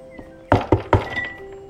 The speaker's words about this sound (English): I'm gonna knock on the door. Is there a door? To the inside, yes.